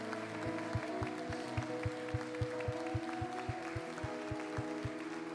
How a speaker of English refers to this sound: If God has been good to you, can you give him a hand clap of praise, of adoration today?